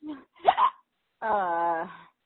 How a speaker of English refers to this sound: And yes, I have the hiccups. And they sound horrible. Also, in about three more, they're going to start to hurt.